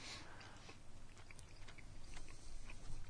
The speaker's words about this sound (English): Stop chewing. Can you hear it? Yeah. Really? It's driving me nuts.